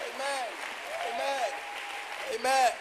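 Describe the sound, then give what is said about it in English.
An audience claps their hands in a steady, dense wash of applause that lasts throughout, with voices calling out over it and a louder swell near the end. “Clap your hands if you know what I'm talking.”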